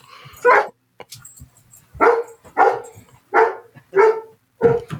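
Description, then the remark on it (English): A dog barks six times in a loose, uneven rhythm, each bark sharp and fairly loud, with short quiet gaps between them and faint background noise. “Get the dog out.”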